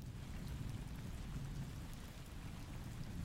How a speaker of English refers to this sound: And as soon as you exit back into the outside, the rain and the coldness start seeping back into your kit. Burr. It's cold.